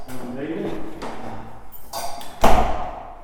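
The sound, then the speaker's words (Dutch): A door into a wine barrel storage area is opened: a couple of sharp latch clicks followed by a heavier clunk and thud as it swings, with faint voices and background noise. “Ja, nog een deur open,”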